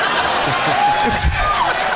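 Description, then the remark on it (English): A dense, steady round of audience applause fills the whole two seconds, loud and continuous, with crowd murmur and a few voices mixed into the clapping. “That round of applause.”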